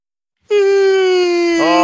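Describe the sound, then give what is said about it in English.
A single drawn-out vocal yawn, loud, holding a steady moaning tone before sagging slightly at the very end. No one speaks. “It's a yawn?”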